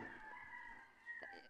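rooster crowing

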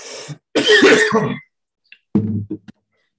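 coughing and throat clearing

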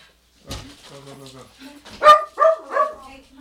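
dog barking

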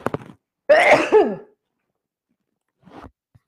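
sneeze

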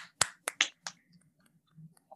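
round of applause

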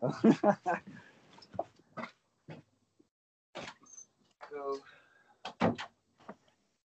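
dogs barking excitedly

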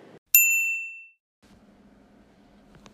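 voicemail answering machine tone

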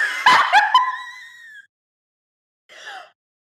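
dog yipping and whimpering

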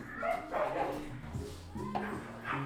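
dogs barking

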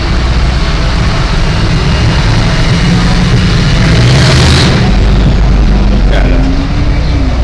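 pickup truck driving past

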